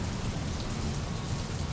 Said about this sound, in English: Why are the sprinklers going off?